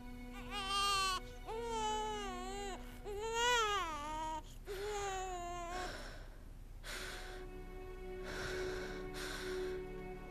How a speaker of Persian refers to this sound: فکر میکند صدای گریه نوزادی را میشنود.